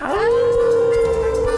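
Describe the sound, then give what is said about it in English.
Human voices imitate a dog's howl, howling at the Moondog on a count of three on the Moondog Show: a loud, sustained wail that swoops upward at the start, then holds one steady pitch for under two seconds, with no talking. “Now we going to howl at the Moondog on the count of three.”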